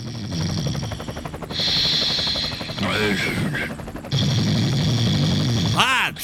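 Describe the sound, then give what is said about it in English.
A steady, loud traffic-report helicopter rotor drone over Los Angeles at 5:02 a.m. dominates throughout, with a rhythmic chopping pulse and whining engine tones, broken by brief whooshing, sweeping sounds near the middle and end. “are you flying the helicopter?”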